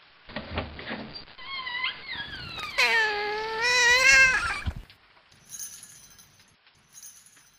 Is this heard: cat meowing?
yes